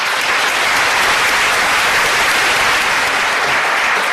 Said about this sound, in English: Thank you so much for clapping before I asked you to.